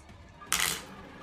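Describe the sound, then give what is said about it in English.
A brief, bright clatter of dice tumbling across a hard table, a quick rattling burst that dies away in under half a second, fairly loud against a quiet background. “I'm going to burn a drive to add another dice.”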